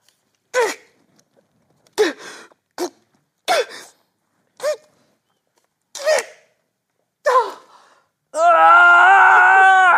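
A man lets out a series of short, sharp straining grunts, about seven evenly spaced efforts, then breaks into a loud, sustained scream that runs to the end.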